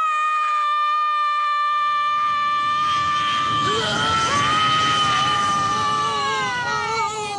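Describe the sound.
A woman lets out a long, loud, anguished scream imitating someone in pain, held steadily at first and then wavering and bending in pitch for several seconds without a break.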